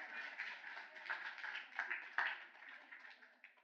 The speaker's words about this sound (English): Round of applause.